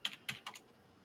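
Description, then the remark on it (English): A few quick keyboard keystrokes as someone types a quick online search, three or four sharp clicks in a brief uneven burst, moderately quiet, then a short stretch of near silence. “I'm going to search on real quick before I say it in case I'm wrong and I look like an idiot.”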